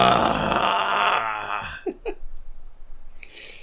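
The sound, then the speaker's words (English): A drawn-out, exaggerated yawn voiced loudly, its pitch sliding downward before ending in a couple of short breathy grunts and an exhale. “Yawn, stretch, because that's a thing still here in the future.”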